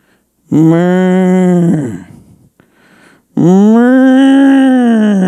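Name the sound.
cow mooing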